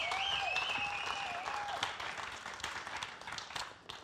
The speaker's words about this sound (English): Come on, let's give him one more hand clap of praise, would you?